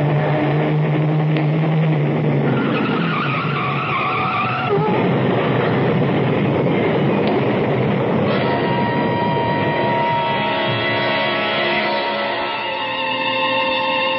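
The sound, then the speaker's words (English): A truck rushes past on the road, a loud, continuous roar with shifting whining tones and a skidding screech, sustained for several seconds with no voices. “Look out, Sam. A truck. Turn the wheel. Go off the road.”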